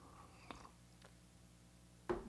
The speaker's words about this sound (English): I have a sip of coffee, and I'll see if I can answer some questions for you guys.